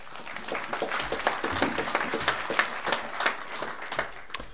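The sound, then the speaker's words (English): An audience applauds steadily for several seconds to welcome a speaker, many hands clapping in a dense, irregular patter at moderate volume, with no voices over it. “So please give Pat a welcome as he says a few words.”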